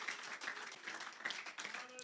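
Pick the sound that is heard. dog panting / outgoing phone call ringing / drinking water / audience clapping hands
audience clapping hands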